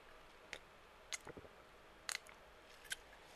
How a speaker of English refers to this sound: Sorry if y'all hear a lot of fucking swallowing and shit. Hold on. Gotta take a swig.